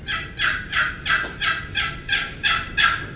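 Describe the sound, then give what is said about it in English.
A turkey box call, two surfaces dragging together from high to low, is worked in a steady run of about nine raspy, high-pitched yelps, each scratchy note evenly spaced and fairly loud, with no talking. “Just like a pot call, a box call is two surfaces dragging together, high to low.”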